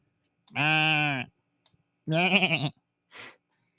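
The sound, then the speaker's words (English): A sheep bleats twice, first a steady drawn-out call, then a shakier, wavering one, followed by a short rough snort-like sound. “Do they hit sheep for like fucking wool?”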